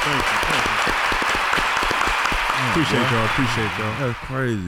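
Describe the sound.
Loud, sustained applause from a crowd welcoming special guest DeMar DeRozan, a Chicago Bulls player, onto the show, dense clapping throughout with cheering and voices talking and calling out over it.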